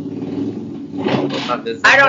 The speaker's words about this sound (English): There's a motorcycle apparently. Outside.